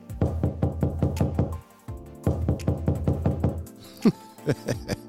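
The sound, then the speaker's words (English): Loud knocking on a door in two rapid bursts of about a dozen raps each, separated by a short pause, followed by a few scattered knocks. “I said, "Ma, somebody's at the door."”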